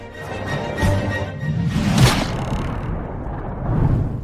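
A loud, dramatic intro theme rumbles with a heavy low end, rising swells and sweeping whooshes across a few seconds, played alone with no one talking.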